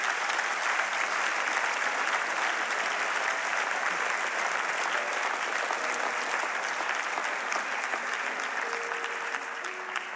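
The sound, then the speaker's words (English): A church audience claps steadily for the whole stretch to encourage people coming down to the front, a dense, even wash of many hands with no single claps standing out, holding at a constant level throughout. “I haven't been in this church, but as people come down, it's okay if you see somebody near you coming down, you can applaud.”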